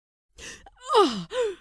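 A voice makes a pained gasp: a brief breathy intake, then a strained cry that slides down in pitch, followed by a shorter falling whimper.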